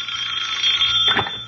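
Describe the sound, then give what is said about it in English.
A telephone rings with a steady, shrill electric bell tone, loud and close, sustained through the moment with no one speaking over it. “Now, wait here in the hall, dear, while I answer the phone.”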